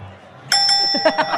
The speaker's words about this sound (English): Need a bell for that